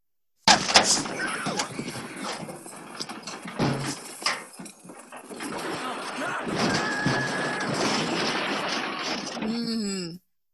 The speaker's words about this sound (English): Oh, it's when he flips the car over. It is, yeah. It's when, good job. When Hightower flips the car over on Dirtbag or whatever his name was.